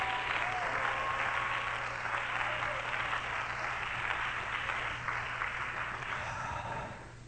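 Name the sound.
audience clapping hands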